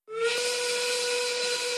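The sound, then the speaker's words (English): A loud, sustained 1930s-style factory work steam whistle blasts steadily with a breathy hiss and a strong pitched tone, sounding alone for nearly two seconds. “You've made me 1930s work whistle angry.”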